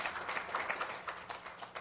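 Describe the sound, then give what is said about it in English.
A roomful of people clapping together about the victories in Jesus, a dense, steady patter of many hands that stays fairly even and moderately loud throughout, with no voices standing out. “Can anyone clap or anything about just the victories that we have in Jesus?”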